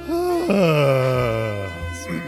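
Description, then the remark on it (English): A man clears his throat to warm up his voice with a long, drawn-out vocal groan that starts higher, slides down in pitch and holds low for about two seconds before trailing off, fairly loud and alone. “I'm just clearing my throat and warming.”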